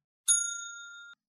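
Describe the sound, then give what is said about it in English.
A single bright bell ding, struck as a warning that the ending of a film is about to be spoiled, with a sharp metallic strike, then a clear ringing tone that sustains for nearly a second before cutting off, heard alone with no talking. “Okay, so I'm going to hit the bell on this because we're going to spoil the ending.”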